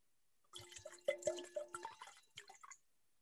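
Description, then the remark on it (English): Cupcake Sauvignon Blanc wine is poured into a glass in a short burst of gurgling and splashing with a faint ringing tone, lasting about two seconds before trailing off into quiet. “actually, so everybody can understand what I'm having here, I'm going to pour a little.”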